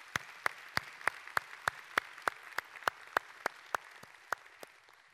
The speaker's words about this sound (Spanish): Y por eso, al final le damos gracias a Dios de lo que Él continúa haciendo entre nosotros. ¿No le da un aplauso a ese Dios tan enorme?